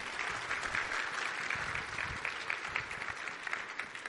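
A crowd applauds steadily for a person who came up to share, a dense wash of many hands clapping at an even level for several seconds, with no voices standing out above it.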